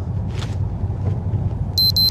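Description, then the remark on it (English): A short burst of high, thin electronic beeping, a couple of quick bright tones from a device set to go off at key moments to keep to a schedule, sounds over a steady low engine rumble, like a car idling or driving. “Who needs music when you have random beeping?”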